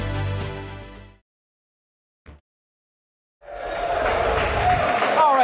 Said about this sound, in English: Hear some cheering beginning, of course. We got 7 minutes till we get to the opening bell.